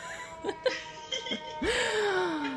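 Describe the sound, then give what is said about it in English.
A siren wails on a city street in New York, its tone sliding steadily lower as it goes by, over a wash of city traffic noise with a few brief knocks before it. “Now there's sirens.”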